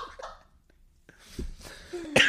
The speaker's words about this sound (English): Sorry, I still got a little bit of a cold if I'm coughing, but.